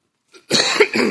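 A loud cough caused by allergies bursts out into the microphone in two quick harsh pushes after a faint breath, with no talking.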